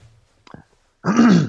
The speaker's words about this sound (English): excuse me, clearing my throat, guys.